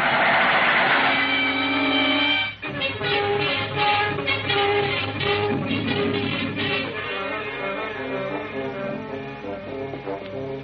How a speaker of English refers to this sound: There's the switch up ahead. Come on. Here comes the train now. We'll make it.